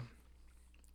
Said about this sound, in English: I hope everybody loves the chewing. Yeah. I think if you made it this far, Let me get really close.